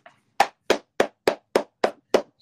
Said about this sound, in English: We're gonna clap.